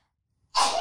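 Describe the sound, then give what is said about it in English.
A single sudden sneeze bursts out after a moment of near silence, loud and breathy with a sharp onset. “I usually sneeze.”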